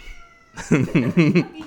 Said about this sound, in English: It's a very talkative cat.